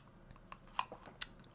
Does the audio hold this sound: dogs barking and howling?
no